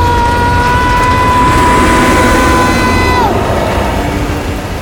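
A rail car rushes along a winding track through twists and turns, ups and downs, with a loud, steady roar and a high metallic whine that slides down in pitch near the end, continuous throughout.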